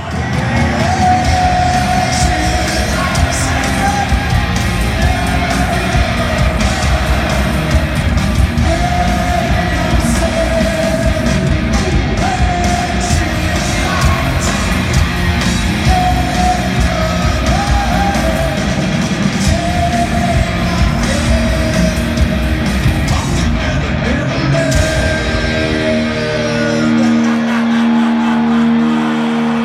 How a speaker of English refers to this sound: Crowd is going crazy. They're all standing up.